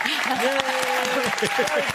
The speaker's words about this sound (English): Clap if you had your third booster.